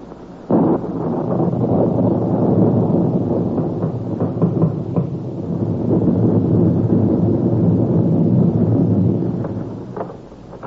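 A loud, continuous storm roars on a January night, with gusting wind and deep rumbling thunder swelling and fading for about ten seconds before dying away. No one speaks.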